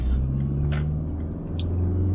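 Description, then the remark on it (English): A car engine hums steadily with low road rumble, shifting in pitch as the vehicle slows and turns at a junction with no traffic light, with two brief hissing bursts over the drone. “Yeah, so we are going to turn. And there is no light. Like no traffic light.”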